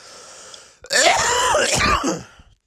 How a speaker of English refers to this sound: And …, it sounds like that touring has caught up with you. What a cough.